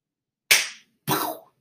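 A bus windshield being smashed by a group of Irishmen at an arena: two loud, sharp cracking blows about half a second apart, each trailing off in a brief crunching rattle, with silence around them and no voices.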